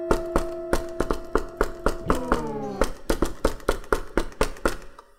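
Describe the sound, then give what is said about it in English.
A secret knock on a door: a long run of sharp, hollow knocks, roughly eighteen raps in a steady beat that quickens slightly toward the end, with a faint sustained tone sliding downward midway. “I'm gonna try my secret knock on the door.”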